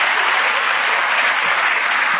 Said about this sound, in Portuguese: Muito bom, muito bom. Pode aplaudir.